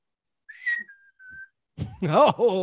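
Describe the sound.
A person whistles an imitation of the call of the bird known as the cheeseburger bird, three steady high notes, the last one held and fading slightly, followed right away by someone speaking.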